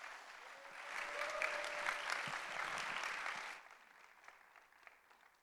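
An audience at Cathedral of Faith applauds warmly to welcome a guest speaker, a pastor from Southern California, dense steady clapping with a faint raised voice over it, then the applause thins abruptly to scattered claps and fades out.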